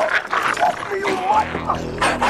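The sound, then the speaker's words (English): A puppy in a movie scene yips and whimpers in a string of short, high-pitched cries, clear, with a low steady hum joining in the background partway through. “Has anyone seen my dog? That puppy.”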